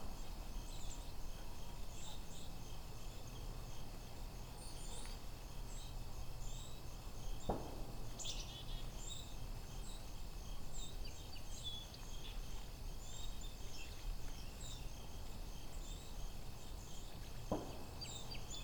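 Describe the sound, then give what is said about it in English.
A dense flock of mostly white-throated sparrows with a few song sparrows chips and calls continuously in a vineyard region, over a steady low rumble, with a couple of faint thumps from automated air guns used to keep birds off, and no talking. “These are mostly white-throated sparrows, so there's a few song sparrows in here.”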